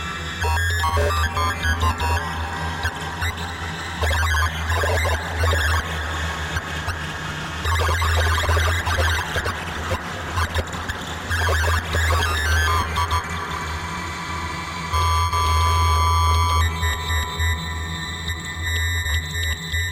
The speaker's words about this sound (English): And I've got the Desmodus region cranked, so we get that kind of sidechain effect. Whenever there's sound, the reverb kind of cuts out, and then when the sound goes away, the reverb comes back in. Sounds kind of cool.